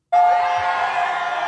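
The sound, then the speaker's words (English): A crowd bursts into loud, sustained cheering and shouting after a brief silence, the roar holding steady at full volume with a bright ringing tone near the start. The crowd at a fraternity house cheers for President Trump as he throws footballs into it, some holding Trump signs. “And they're cheering for him.”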